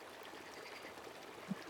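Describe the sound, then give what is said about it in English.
Steady burbling of a wetland creek flowing past rocks under a dead tree, a soft continuous trickle and gurgle of moving water with no voices, one brief low plop near the end. “Burbling of the wetland creek going by.”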